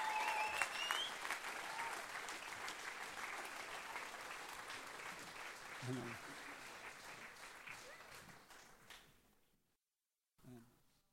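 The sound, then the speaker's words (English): A crowd claps steadily in a dense, crackling wash of applause that thins out and stops around nine seconds, followed by a short burst of noise and a few voices. “Come on, let's give him a big clap right here.”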